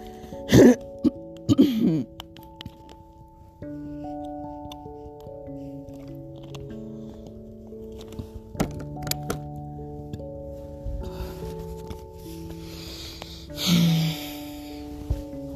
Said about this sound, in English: Let me just give myself another water break for my throat here. Sorry, guys.